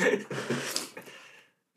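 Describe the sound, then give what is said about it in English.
A run of breathy, airy sniffs, noisy bursts at a moderate level over roughly a second and a half, each drawn in quickly through the nose before the sound drops away to silence, from cold weather and allergies. “Sorry, I keep sniffling.”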